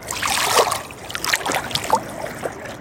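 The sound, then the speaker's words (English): Small waves lap gently and irregularly, with soft splashes and sloshing water under a steady wash of trickling sound. No voices. “With every little wave here, feel the soothing, the caressing, every single cell of your body being caressed by life, by this life force, this sound current.”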